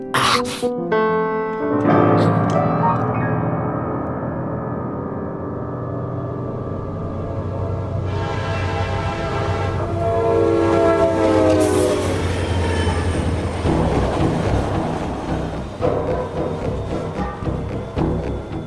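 A train rolls steadily along the tracks with a loud, continuous rumble, while long, multi-toned horn blasts sound over it, rising and falling before the rumble carries on alone.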